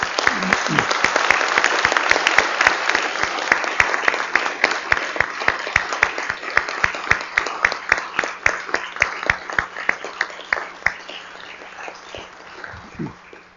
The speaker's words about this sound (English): I think maybe some applause is appropriate at this point.